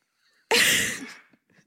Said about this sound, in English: The sweetest sneeze I've ever heard.